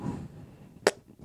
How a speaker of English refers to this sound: Dinky fart. I thought if I farted harder, I would pee in my pants.